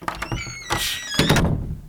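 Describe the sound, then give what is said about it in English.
A door closes: a creaking, squeaky hinge swing followed by a solid thunk as it shuts, with a short rattle afterward. No one is talking. “Oh, you spoke after the door closed.”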